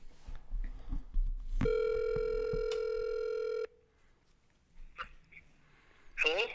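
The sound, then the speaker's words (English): A single steady ringback tone from an outgoing phone call to a caller with a question sounds for about two seconds, clear and fairly loud, then cuts off, followed by quiet line noise and a few brief scratchy sounds. “We actually might have a phoned in question.”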